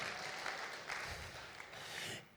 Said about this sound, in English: Come on, let's applaud the Lord Jesus Christ. Come on, let's wake this thing up.